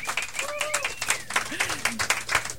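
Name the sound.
studio audience applause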